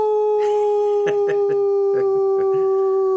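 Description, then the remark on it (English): A long, steady howl held at one pitch by a human voice imitating a dog or wolf, loud, with a few short breathy yelps layered underneath. “And will you give us the a complimentary howl that you gave in the episode?”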